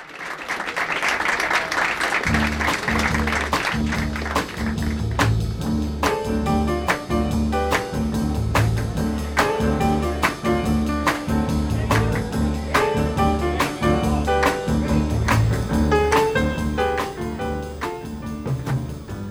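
A live jazz piano trio plays an upbeat instrumental groove with a steady walking bass and crisp drums, following a brief burst of crowd noise and applause, the audience audible beneath. The piece is an instrumental cover of a pop song, recorded in 1965.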